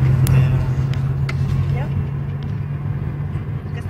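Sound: car driving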